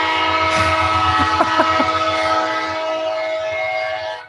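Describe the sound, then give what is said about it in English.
A long, loud horn honk blares outside an open window as a man sitting out there honks his horn, holding one steady, brassy tone for about four seconds before cutting off abruptly. “Yeah, the guy's like sitting out there honking his horn loudly.”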